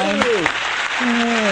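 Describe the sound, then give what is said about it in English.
A crowd claps steadily in a dense, continuous patter, with a few voices calling out and cheering over the applause for the whole short stretch. “Hey, we have applause.”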